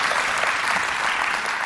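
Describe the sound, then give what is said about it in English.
An audience applauding steadily, a dense, even patter of many hands clapping at constant loudness throughout, with no voices standing out. “Yeah, you can clap.”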